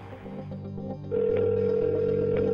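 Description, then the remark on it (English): A telephone rings early at a house: a steady electronic tone starts partway through and holds loud to the end, over a low background hum, with no voices. “The phone rang early at Pam Bardet's house”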